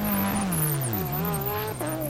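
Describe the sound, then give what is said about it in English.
The number 72 race car accelerates as it is released out of pit lane, a loud, continuous harmonic roar whose pitch slides and then jumps abruptly, like a gear change, as it pulls away. “And away they go, and it's released as Ben Barker crosses the line.”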